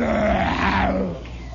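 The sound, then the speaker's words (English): A voice imitates the call of a sea cow kept in a neighbor's garage: one low, drawn-out grunting moan, buzzy and rich in overtones, that bends slightly up then down over about a second before trailing off. “It was a sea cow.”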